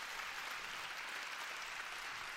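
Steady applause from the ladies for the brothers, a dense wash of many hands clapping at an even level throughout, with no voices standing out.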